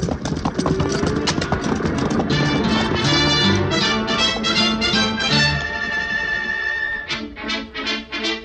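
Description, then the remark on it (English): A herd of cattle stampedes past, hooves drumming in a loud, continuous rumble of rapid thuds that stays heavy for several seconds before thinning into scattered beats. “There go the cattle. They're off.”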